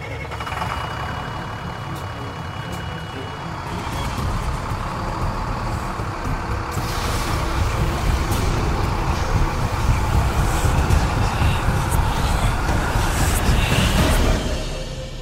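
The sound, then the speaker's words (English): A bus engine roars, a deep continuous rumble that swells louder and harsher about halfway through as it strains under acceleration, with no voices. “What happened to the bus?”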